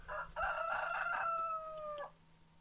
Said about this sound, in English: Do you like our rooster? No. The people like the rooster. I'm telling you. That's a real rooster, ladies and gentlemen. It's not a sound file.